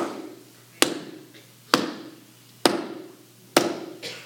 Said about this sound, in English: The nails being pounded into him on the cross.